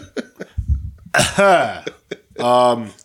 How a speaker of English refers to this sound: You're going to cough all fucking time here